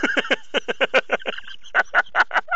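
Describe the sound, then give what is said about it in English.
Recorded frog croaks from a Sharper Image white noise machine: a quick run of raspy, pulsing croaks, a brief pause, then a few slower, louder croaks. No one speaks. “Yeah, that's my white noise machine.”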